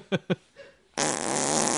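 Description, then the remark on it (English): Two short, sputtering fart pops come first, then a long, loud, buzzing fart blast that carries on steadily to the end, forceful. “Step two, fart blast into sky.”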